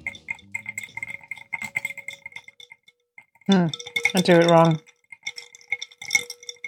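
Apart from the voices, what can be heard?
ice cubes clinking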